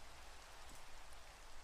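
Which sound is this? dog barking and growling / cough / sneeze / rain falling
rain falling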